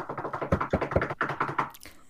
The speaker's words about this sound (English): Arise, one knocks.